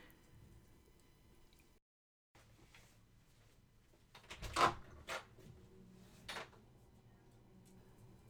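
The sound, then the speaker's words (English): Muffled movement just outside a bedroom door as a roommate walks around doing something: a few soft knocks and thuds, like a drawer or cupboard being handled, over a quiet indoor hum. The sharpest bump lands midway, with a lighter one after. “Anyway, well, there's my roommate walking around outside my bedroom door doing something.”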